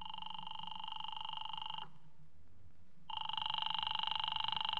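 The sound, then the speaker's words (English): A telephone rings in two long, rattling bursts separated by a short pause, loud, with no voices present. “do you mind if I use your phone?”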